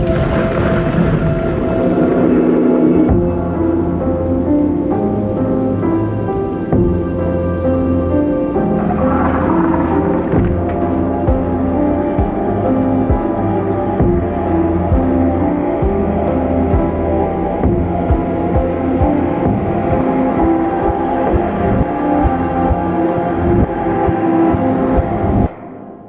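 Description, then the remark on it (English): An instrumental theme tune plays loud and steady for about twenty-five seconds, with sustained droning tones over a pulsing low rhythm, then cuts off abruptly. No voices are heard. “All right, cue that theme music.”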